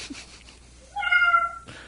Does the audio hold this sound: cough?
no